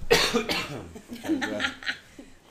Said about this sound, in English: Let me cough before we actually start.